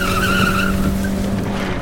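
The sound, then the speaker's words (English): A car engine roars at high revs with the accelerator floored while the tires let out a sharp, rising squeal through a turn, the screech fading after a moment as the engine keeps pulling hard. “Just keep driving. Faster”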